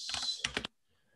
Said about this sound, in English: Sorry if I'm having any spelling errors here. I'm typing as fast as I can.